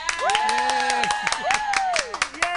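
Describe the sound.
A round of applause with scattered claps and whooping cheers from a small, lively crowd for a singer whose song is number one on the Pride Top 20 Countdown year-end list for 2021, voices rising in excited shouts over the clapping.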